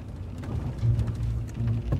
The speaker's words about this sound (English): Zanara and Craw drove through the rain for 6 straight hours.